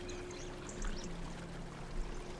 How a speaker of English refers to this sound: I brought some coffee, if that's your thing. Give you a cup. Or I got tea too in my backpack if you want some tea. Whatever your deal is. I'm gonna take a little sip of my coffee here